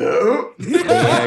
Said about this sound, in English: Ending a song on a burp.